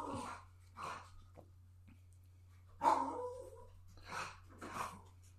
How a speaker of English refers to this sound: Jeez, my dog and this crush on Jude Law—it's amazing. Yeah, he'll come back on screen. Exactly, he walks away and Henry starts barking.